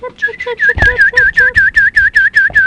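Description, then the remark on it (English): A person imitates a bird, whistling a rapid string of about a dozen short, high chirps in a steady rhythm, fairly loud, with a few lower vocal tones mixed in at the start. “The redhead chirped like a bird.”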